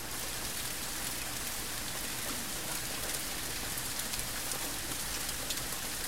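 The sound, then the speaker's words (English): Steady rain falls outside on an evening of about 50 degrees, a dense, even hiss of drops pattering on surfaces with no pauses, heard from a kitchen through open windows with no voices over it. “That's the rain. We've got the windows open.”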